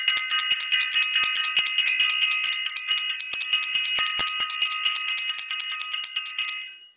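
A bell rings continuously for several seconds, a bright, high metallic tone with a rapid buzzing rattle running through it, holding steady and loud before stopping abruptly. No one speaks.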